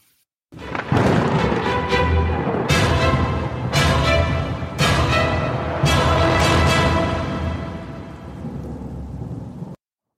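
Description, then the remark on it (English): Lightning sound effects from a show's title sequence: a loud, steady rain-like roar punctuated by five or six sharp thunder cracks, starting abruptly and cutting off just as suddenly, with no talking. “Yeah, that was lightning and everything.”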